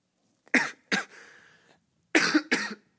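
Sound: cough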